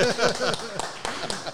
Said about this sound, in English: So we've got the canned applause out of the way.